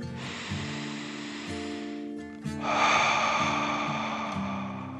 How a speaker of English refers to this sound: he drifted off into a deep sleep as he listened to the sound of the waves rolling over the colorful reef.